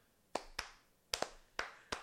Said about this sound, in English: And then Persephone joins in. Slow clap.